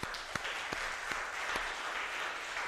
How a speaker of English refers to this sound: You're a local leader. Yeah, stand up. Give them a hand.